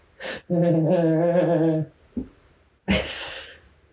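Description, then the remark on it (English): A dog, Patch, whines in a drawn-out, wavering tone for over a second, fairly loud, then lets out a short breathy huff. No one speaks. “I've never met a dog like this.”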